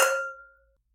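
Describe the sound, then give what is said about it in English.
A single bright clink of glasses touching in a toast, a sharp strike followed by a clear ringing tone that fades away within about half a second, with no voices. “Let's cheers. I want to try this. Yeah. Cheers. Cheers.”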